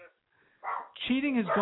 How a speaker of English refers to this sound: Oh, that dog is back in the studio. Get the exterminator.